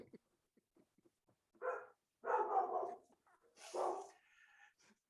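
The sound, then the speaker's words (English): A female dog barks excitedly in a few sharp bursts, with short yips and a whiny tone, fairly loud against an otherwise quiet background with faint clicks. “My dog got excited.”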